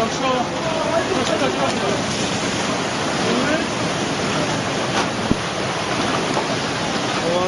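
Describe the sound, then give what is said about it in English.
A powerful, continuous roar of tsunami water rushing over land, dense and steady throughout, with faint indistinct voices barely audible beneath the churning torrent. “I cannot stress how scary and heartbreaking this footage is, but it truly does look like the water is attacking the land.”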